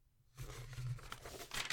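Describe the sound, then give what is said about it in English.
Crackly paper being crumpled and tossed away in a quick continuous burst of crinkles and rustles that builds slightly toward the end, lasting under two seconds with no one speaking. “We're just throwing that paper right away.”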